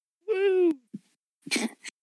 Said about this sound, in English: Single yawn.